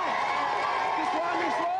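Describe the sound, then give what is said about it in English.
A crowd cheers and applauds a team called the 49ers in a steady, dense wash of noise, with shouting voices and whoops riding over the clapping throughout. “Right, well, give this 49ers a big round of applause and let's go and see if the others have got no chance.”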